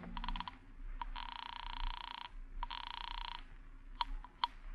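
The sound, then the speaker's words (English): A telephone rings twice in long electronic bursts with a short pause between, preceded by a rapid flutter of clicks and followed by a couple of sharp clicks, over a low steady hum. “Then you hurry home, destroy Fred Mason's films, and phone Cynthia.”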